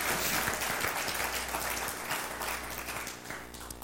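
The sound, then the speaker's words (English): An audience claps unevenly for a few seconds, a dense patter of overlapping hand claps that stays fairly steady and then thins slightly toward the end, with no voices. “That's the awkward clap there.”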